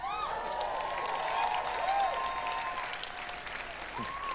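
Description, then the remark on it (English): A large conference audience at an Elder Scrolls Online presentation applauds steadily after the announcement of over 11 million players, a dense wash of clapping with some cheering and whoops rising over it, sustained loudly for the whole span. “Don't wait for applause that.”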